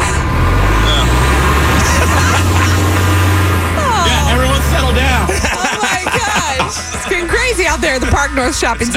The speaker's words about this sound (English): Then a so-called party bus, which actually was a city bus, rolled by